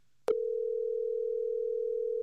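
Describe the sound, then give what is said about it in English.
A steady, unbroken telephone dial tone of an outgoing call starts abruptly after a brief click and holds at an even, moderate level for about two seconds before cutting off. No voices are present. “Let's get her on the phone.”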